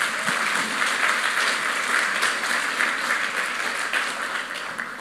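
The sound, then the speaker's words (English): An audience applauds steadily for about five seconds, a dense, even wash of many hands clapping at a fairly loud, constant level that eases off slightly at the very end. “Yeah, give them a big clap.”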